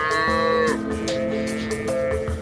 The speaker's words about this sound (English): And this is obviously a cattle farmer's pride, your prized bull.